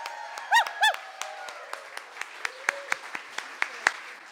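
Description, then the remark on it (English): Audience applause at a live show recorded on July 13, 2016 at Wellfleet Preservation Hall in Cape Cod, Massachusetts, welcoming the first performer. It opens with two rising whistles, then dwindles into scattered, sharp individual claps that thin out and fade over a few seconds. “Big applause for Lisa.”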